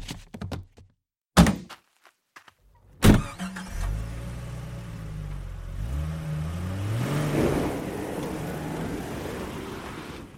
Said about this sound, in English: so he heaved the body into the trunk of his car and drove off.